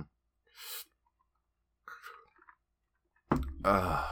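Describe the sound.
Two airy slurping sips of hot coffee, the signature brew of Writer's Block Coffee, separated by a pause, followed by a short breathy exhale and the start of someone speaking.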